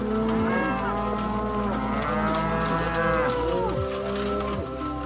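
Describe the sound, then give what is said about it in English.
Several cows on a pasture at Joel Salatin's farm moo loudly and repeatedly, their overlapping low, drawn-out calls forming a continuous chorus, with no talking. “But the lives of these cows is in stark contrast to the fate of bovines in large industrial facilities.”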